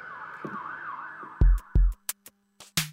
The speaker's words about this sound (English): I know the sirens are going off right now, but like generally it's like a lot more quiet here on the street right here where I live.